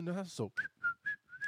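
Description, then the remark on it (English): A brief spoken syllable, then a person whistles four short, clear notes in a steady rhythm, fairly loud. “I hate whistling on podcasts. I do not know why I did that, because it's so annoying when I hear it, because the sharp, shrill sounds and all that stuff.”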